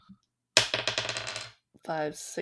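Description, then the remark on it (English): A single die is rolled again across a hard tabletop, clattering in a quick, fading burst of sharp clicks lasting about a second, followed shortly by a brief voiced sound. “Sorry, I have to roll one dice again.”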